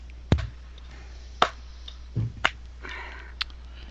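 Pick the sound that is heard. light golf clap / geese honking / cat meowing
light golf clap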